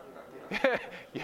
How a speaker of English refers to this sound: we got some dog